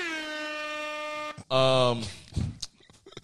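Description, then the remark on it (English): A steady, blaring air horn blast holds for over a second, then a shorter, louder honk follows, trailing into a few brief voice-like noises. “Yeah, definitely hit that with the air horns.”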